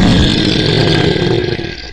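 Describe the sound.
A loud, gravelly roar held for about two seconds, a human voice imitating a bear, steady and rough before trailing off abruptly at the end.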